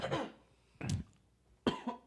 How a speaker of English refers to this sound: cough break.